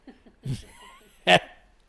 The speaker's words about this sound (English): Where's that fucking Demi Lovato fart?